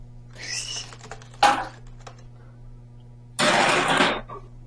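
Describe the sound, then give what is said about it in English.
A metal chair scrapes and drags in three rough bursts, the first with a squealing, whining tone, then a short scrape, then a longer harsh grinding drag over a steady low hum. “Sounds like you're dragging around a metal chair.”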